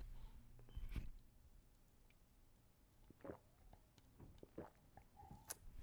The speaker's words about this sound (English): Taking a sip.